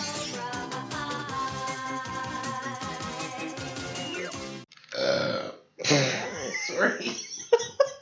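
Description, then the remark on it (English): A long, loud, drawn-out belch, rumbling steadily for several seconds, followed by a few shorter, choppier belches in quick succession. “Well, it's belching.”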